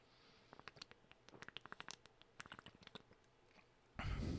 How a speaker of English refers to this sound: Take a little sip of Propel there. I got the, I've been digging this fucking mandarin orange flavor. My God, it's so good.